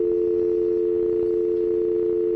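A steady, unbroken telephone dial tone hums loudly for a couple of seconds after an incoming phone call drops, a constant low electronic drone with no voices or other sounds over it.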